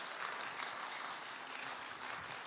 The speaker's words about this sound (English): Bring in a youth kid. Volunteer. Forced. Give him applause.